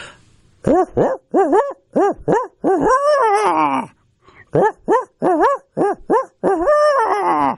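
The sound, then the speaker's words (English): A person imitates a barred owl, giving two loud phrases of rhythmic, throaty hoots. Each phrase ends in a longer, wavering hoot that slides downward. “My girls love barred owl noises. Any chance you can do another one”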